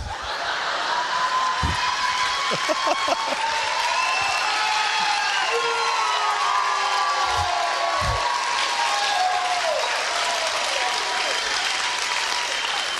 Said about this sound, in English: And listen, I thank you. I appreciate your applause and standing up.